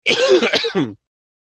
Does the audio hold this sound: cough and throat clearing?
yes